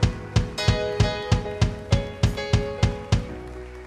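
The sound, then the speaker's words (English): An audience claps in steady unison as a hand clap of praise to the Lord, about a dozen sharp beats at an even, quick tempo, over sustained keyboard chords that hold underneath throughout. “Come on, give the Lord one more hand clap of praise.”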